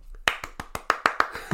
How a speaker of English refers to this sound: And now he's gotten a round of applause. If you're listening, well done, we salute you.